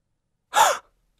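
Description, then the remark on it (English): A single sharp gasp, a quick breathy intake of air lasting about a third of a second, clear, with silence on either side; a recorded gasp sound effect. “We've got the gasp here for you guys right now.”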